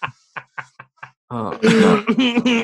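A person coughs in a quick series of short, dry bursts, then gives a louder, strained, throaty cough that drags on as a rough vocal groan.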